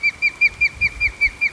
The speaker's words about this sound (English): The bird that you hear calling anxiously in the background is an osprey.